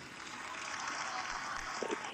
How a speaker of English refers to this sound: Millions of people applauding.